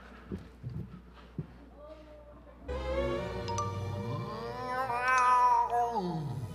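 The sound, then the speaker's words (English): A cat lets out one long, loud, drawn-out meow that rises and wavers for several seconds, after a few soft thumps and quiet background noise. “Chubbikins, you come out here this instant, you bad cat.”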